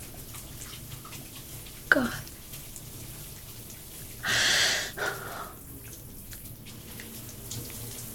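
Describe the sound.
A short, loud gush of shower water sprays for under a second, followed by a smaller splash, as someone sits in the shower; otherwise quiet. Just before it, a voice briefly speaks.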